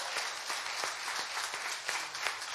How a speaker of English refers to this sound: Now, if you are saved, you better start clapping, because God did some big things.